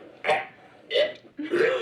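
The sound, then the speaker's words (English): A voice mimics retching up a big signet ring, three loud, guttural heaves in quick succession, with no words spoken. “And just coughs up a big ring, like a signet ring.”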